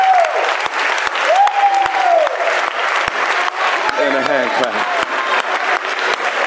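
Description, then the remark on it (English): A church audience, standing, claps and cheers loudly and continuously in praise of God, dense applause with shouting voices rising above it, some calls sweeping up and down in pitch. “Give God a hallelujah and a hand clap.”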